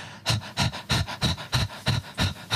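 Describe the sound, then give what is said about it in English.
A person imitates a dog panting outside the door in hot weather: about eight quick, breathy huffs in a steady, even rhythm, fairly loud and hissy, with no talking over them. “That's what I used to, yeah, when we had a dog and it was hot, outside the door just going...”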